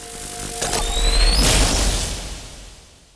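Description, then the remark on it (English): A loud, deep explosion of the core of a nuclear power plant's fourth reactor booms after a brief rising whine, its heavy low rumble swelling and then slowly fading away over a couple of seconds, with no one speaking. “The fourth reactor went through a huge power increase, and the core of the reactor exploded.”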